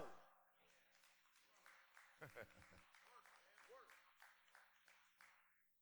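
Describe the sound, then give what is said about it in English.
Sparse, light applause from an audience: scattered claps spread unevenly across a few seconds, with voices murmuring alongside them. “The applause is at a minimal because most of us are connected to people that mean us no good.”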